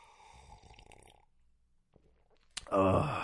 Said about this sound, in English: I'm going to take one more sip.